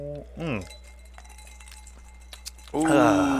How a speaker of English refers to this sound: Ooh, cheers. Cheers. Oh, yeah. This is like real clanks. Real glass.